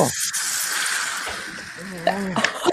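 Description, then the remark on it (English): The first pint of Guinness of the year being poured from the tap, a steady, frothy hiss that runs for about two seconds before a voice comes in over it toward the end. “Such a glorious sound. Oh, goodness. Oh, my goodness. The first Guinness of the year is just a glorious...”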